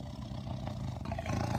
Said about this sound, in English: She heard the soft warning growl deep in the white tiger's throat.